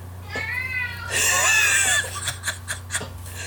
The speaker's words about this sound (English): Can you hear my cat? He does this every time I try to record. I thought he was asleep.